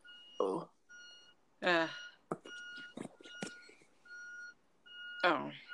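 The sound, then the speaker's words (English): A truck's steady backup beeping repeats at regular intervals as it pulls into a driveway downstairs, while people talk over it in bursts. “Yeah, it sounds more like a truck because you don't remember to hear a car with them beeping like that.”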